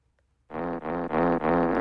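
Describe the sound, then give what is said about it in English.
A loud, buzzy fart sound in four quick connected blasts, low and raspy with a rich tone, following a brief moment of near silence. No one speaks. “so I'm going to bring a topic, and I'm going to fart myself in right now, if everyone's ready.”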